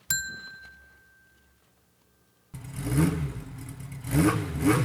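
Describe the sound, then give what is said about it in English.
A single bright bell ding rings out and its clear tone fades slowly over a couple of seconds, then a loud engine abruptly roars and revs. “We're ringing the bell for you.”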